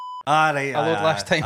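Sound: censor beep sound effect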